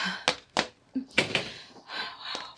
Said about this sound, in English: What's the matter? The door's stuck. Stuck? It never did that before. Let me try. Go ahead. It's locked. Well, it can't be. The key's on the inside. It's locked, I tell you.